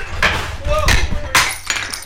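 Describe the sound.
A clattering crash of drinking glasses dragged off a table by a microphone and headphone cord, hitting a hard surface with sharp bright impacts and a brief ringing tone, followed by a couple more clinks and rattles, fairly loud, with a voice murmuring underneath.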